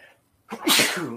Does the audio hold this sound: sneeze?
yes